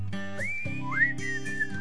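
A melodic whistled tune rises and glides between notes over a steady instrumental backing, clear and upfront with no talking.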